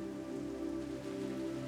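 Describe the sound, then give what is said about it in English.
Steady rain falls in a continuous, even wash of sound, with a low droning hum running underneath and no voices. “Hugging her knees tight to her chest, she sat and looked out through the curtain of rain at the gray landscape in front of her.”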